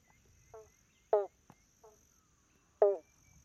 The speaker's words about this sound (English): And the other one's a banjo frog. It's bong, bong.